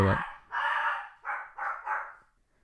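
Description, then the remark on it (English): A dog, Kiwi, barks five loud, sharp barks in quick succession, the second one drawn out longer than the rest, with no one talking. “Every time I do a podcast, Kiwi is so quiet before, and then as soon as I press record, he fucking loses his mind and barks at literally everything.”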